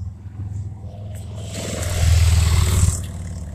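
A deep, throaty engine roar builds and swells to a loud peak, like motorcycles revving close by, then eases slightly toward the end. No voices.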